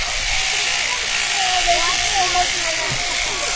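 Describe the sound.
Electric sheep shears buzz steadily, a continuous motor whirr with a hissy edge as they cut the head wool off a sheep, and a voice murmurs faintly underneath.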